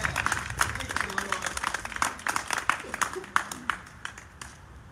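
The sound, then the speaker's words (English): A church audience gives God a hand clap in a dense, steady burst of applause, with voices calling out underneath, the clapping thinning and fading over the last second. “We can give God a mighty hand clap and a thank you right now for what he has done.”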